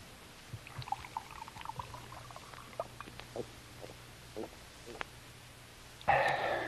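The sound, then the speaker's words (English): Faint clicks and light handling noises, then near the end a sudden loud splash of water being poured into a glass. “Could have a drink of water, sir. Certainly. Right here.”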